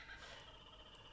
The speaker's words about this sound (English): Can you hear the kookaburras?